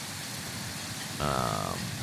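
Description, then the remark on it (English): A loud, steady rush of river water beside a mill on a foggy day fills the whole clip, with a short pitched, harmonic tone rising above the roar for about half a second past the midpoint. “It's very loud by the water here, the rushing water.”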